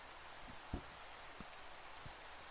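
Steady rain hisses evenly throughout, with a few soft, low thuds of heavier drops landing now and then. No voices, just a continuous wash of rainfall at a moderate, even level.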